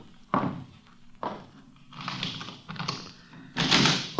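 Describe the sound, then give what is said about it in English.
A door is unlatched and opened: a couple of sharp knocks or clunks from the lock, then a broad scraping swing that ends in a louder rush of movement. Moderately loud, with no speech. “Open the door.”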